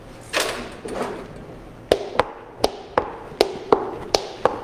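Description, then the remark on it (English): Steady tapping made as a sound effect imitating footsteps walking, to go with a story being told: about nine crisp, hollow knocks in an even, slightly paired rhythm. A soft rushing, shuffling noise comes before them. No one speaks. “Or the sound of walking.”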